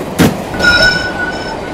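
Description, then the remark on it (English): A train's emergency brake is applied: a sharp metallic clunk, then a loud, high-pitched screech of steel wheels against the rails over the rumble of the moving cars, with no voices. “Look, there! The emergency brake!”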